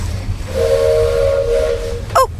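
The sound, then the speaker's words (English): A steam train whistle gives one long, steady, loud blast lasting over a second, then a brief sharp squeal, over a low rumbling hiss of engine noise, as the train departs from the station platform. “We're on our way. We're starting off slowly. Chugga chugga, chugga chugga.”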